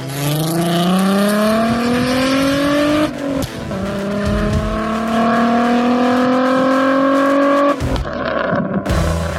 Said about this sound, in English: By the way, that VR6 and that Volkswagen just sounds insane. Oh my God, the pops on that. Those might as well be gunshots.